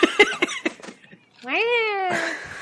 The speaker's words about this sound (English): Meow.